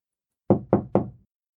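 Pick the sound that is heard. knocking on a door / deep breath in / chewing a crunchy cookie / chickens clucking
knocking on a door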